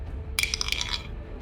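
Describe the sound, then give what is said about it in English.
A short burst of dice clattering, several quick hard clicks and rattles tumbling together for under a second, then quiet room tone. “Sorry, I have dice everywhere.”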